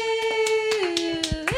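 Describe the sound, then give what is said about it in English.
Brief applause for the news that the show Take My Wife is getting a second season: a handful of sharp, evenly spaced handclaps over a steady, sustained tone that drops in pitch partway through and then rises again at the end. “Hold on. Break for applause.”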